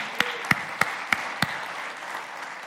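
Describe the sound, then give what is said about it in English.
A crowd claps for the Lord in unison, five sharp, loud claps in a steady, even rhythm, with a soft wash of scattered applause and murmur underneath. “Somebody give the Lord a hand clap for that.”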